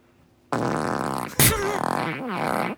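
A long, loud, sputtering fart with a buzzing, wavering pitch, broken by a sharp burst midway before trailing on in a rippling, bubbly drone, the first of four in a game of guessing whose fart it is. No talking is heard.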